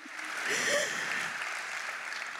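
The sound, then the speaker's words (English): An audience claps steadily for a couple of seconds, a dense wash of many hands at moderate volume, with no one talking over it. “You can clap. It's good.”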